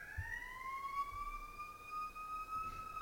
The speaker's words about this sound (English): I'll wait for the siren to pass.